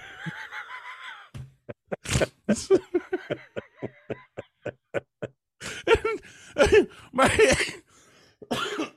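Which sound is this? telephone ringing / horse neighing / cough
cough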